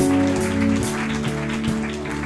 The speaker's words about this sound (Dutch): Laten Jezus een applaus geven.